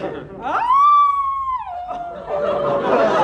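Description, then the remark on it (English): A single wolf-like howl swoops up to a high, steady wail, holds for about a second with a clear, ringing tone, then slides down and fades into a noisy, murmuring background. “But that sounded like a wolf howl.”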